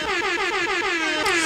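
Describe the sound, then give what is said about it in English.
A loud, brassy air horn blares in rapid repeated pulses, a stuttering stream of sharp honks with no pause between them, dominating, with no voices present. “Let me hit an air horn in this bitch, man.”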